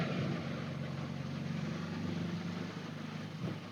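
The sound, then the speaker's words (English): A light car with a Dansk sports exhaust and Weber IDF 40 carburetors chugs steadily at 2800 RPM in third gear at about 38 to 40 miles an hour, a continuous low droning hum with road noise, fairly loud throughout with no speech. “Anyway, the car's chugging along quite nicely here at 2800 RPM at 38, 40 miles an hour.”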